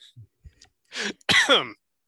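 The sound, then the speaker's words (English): A person coughs twice: a rough, breathy burst, then a louder, throatier one right after, with a few faint clicks and breaths just before and no talking. “I say as I cough again.”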